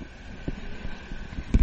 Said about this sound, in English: That's the cars going down the highway.